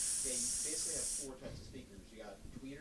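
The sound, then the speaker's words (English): A voice makes a sustained, bright "tss" hiss for about a second, imitating the hiss of the highs from car stereo speakers, followed by people talking. “Because like a hiss is like a tss.”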